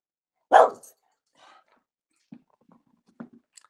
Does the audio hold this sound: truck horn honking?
no